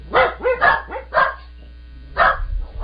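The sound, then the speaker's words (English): A dog barks in a studio in a quick series of about five sharp barks, with a brief pause before a couple more yips; no one speaks over them. “Oh wow, you got some dogs there in the studio.”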